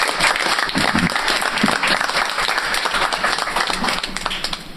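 An audience breaks into a steady round of applause, many hands clapping in a dense, continuous patter that stays loud throughout before easing slightly at the end.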